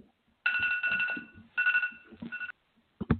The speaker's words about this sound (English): Was that a soundboard, or was that a phone call? No, that was a soundboard.